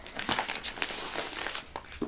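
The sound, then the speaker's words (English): Shiny gift wrapping paper around a present crinkles and crackles in a busy run of sharp, bright bursts, heard on its own at moderate volume. “I'm like more concerned with this shiny wrapping than I am with the present.”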